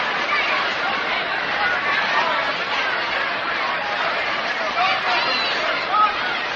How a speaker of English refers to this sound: Crowd sort of quiet for the moment, but they don't stay quiet at Brooklyn Long.